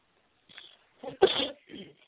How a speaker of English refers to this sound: Bless you.